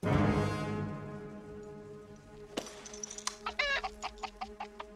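chicken clucking

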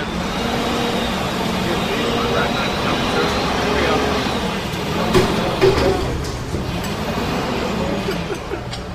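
car engine revving

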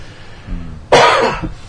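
cough

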